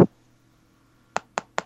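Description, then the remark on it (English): Three quick, evenly spaced taps at a door, on something that is not wood, after a moment of near silence, each one short and crisp, with a single sharp knock-like hit right at the start. “Please come in, someone that's tapping someone's on something at the door.”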